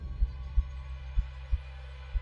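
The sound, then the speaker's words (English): A muffled, low heartbeat thumps steadily and alone, with soft dull beats repeating at an even pace over a faint background hum. “But for many minutes, the heart beat on with a muffled sound.”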